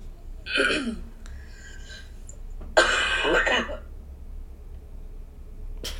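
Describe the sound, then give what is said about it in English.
A voice mimics a wet, phlegmy cough, like coughing stuff up: a raspy throaty burst, then a second longer rough hacking bout, fairly loud, with a quiet gap between and a faint click at the end. “Like that cough that's like, you're like coughing stuff up, but it's awful.”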